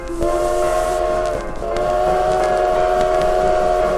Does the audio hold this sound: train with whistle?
yes